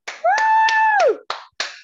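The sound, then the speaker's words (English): Six slow, evenly spaced claps ring out as people clap for someone, a small burst of applause, while a voice lets out a long sustained whoop that slides downward partway through. “Come on, y'all clap”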